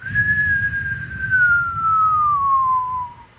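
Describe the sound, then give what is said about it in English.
A single steady whistled tone held for about three seconds, gliding slowly downward in pitch like a falling bomb whistle, performed by a person's mouth over a low background rumble. “See, that was a whistle falling.”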